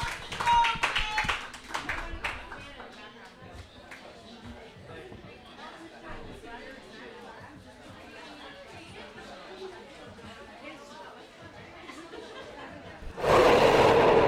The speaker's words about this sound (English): Thank you so much for coming. Give yourselves a huge, huge, huge round of applause. Means the world. Thank you so much.